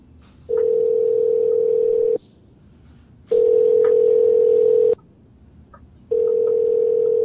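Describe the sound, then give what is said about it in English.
A telephone hang-up tone sounds three times, each a loud, steady electronic hum lasting over a second, separated by brief pauses, with faint background noise and no talking. “Why does there keep hearing a hang-up noise from UK Ted?”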